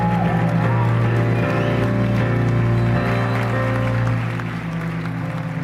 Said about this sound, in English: Now clap your hands for Jesus.